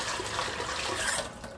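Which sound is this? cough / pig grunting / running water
running water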